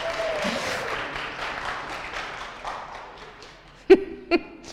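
A crowd claps in a steady, dense round of applause that gradually thins out, followed by two sharp, loud knocks or thumps near the end.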